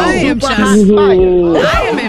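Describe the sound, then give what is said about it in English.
A single loud male voice imitates a screaming crowd, holding a wavering, strained cry for about two seconds with a few breaks and pitch swoops. “He gave his own crowd scream.”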